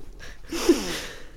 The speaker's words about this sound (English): I might blow my nose, actually. Mm. Blow that schnoz, girl. I should have blown it before.